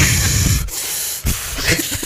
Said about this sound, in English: All I can hear is you breathing